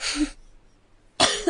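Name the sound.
sneeze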